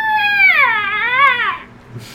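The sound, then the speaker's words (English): A voice imitates the metallic screech of a long metallic spring piercing through the chest of a cloaked figure: one loud, sustained, shrill wail of about a second and a half that dips and rises in pitch before cutting off, followed by near silence. “It screeches through the chest, almost as if piercing thin metal.”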